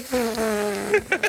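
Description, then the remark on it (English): A fan blowing toward someone lying on a bed gives off a low, buzzy, farting drone that holds steady for most of a second, followed by a few short bursts of voice at the end. “I don't know why my fan sounds like it's farting”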